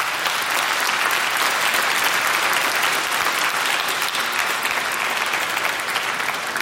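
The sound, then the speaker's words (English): Sustained applause from a large audience for the principal of Andrews Academy, a dense, steady wash of clapping that stays loud and even throughout, with no voices standing out above it. “And for that, we owe our principal, stand up, Pastor Mario Ferguson, a round of applause.”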